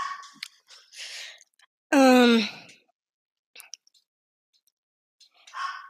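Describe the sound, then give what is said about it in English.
A dog named Max lets out one loud, drawn-out scream with a strained, falling pitch. It lasts about half a second amid otherwise quiet, scattered faint noises. “I keep forgetting my thoughts because my dog is screaming in the background.”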